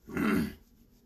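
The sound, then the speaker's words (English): A dog trying to get into a room gives a short, low growl, a rough half-second rumble that fades quickly into quiet, with no one speaking. “My dog's trying to get in my room.”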